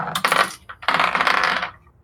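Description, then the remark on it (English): Dice spill off an accidentally knocked book onto a surface, two bursts of tumbling clicks and rattles separated by a brief pause, then settling into quiet. “No, that was me accidentally knocking the book I'd rest all my dice on, and they just went”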